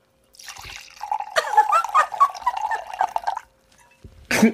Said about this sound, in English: I literally keep thinking to myself that my microphone's not going to pick up when I'm pouring me a glass, but fuck, I just told on myself again.